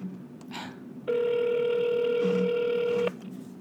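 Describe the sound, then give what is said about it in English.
A phone line rings once as a call is placed: a single steady, buzzing ringback tone lasting about two seconds, clear and fairly loud over a quiet background hum. “Let's get Rielly on the phone.”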